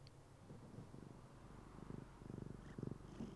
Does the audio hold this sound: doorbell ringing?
no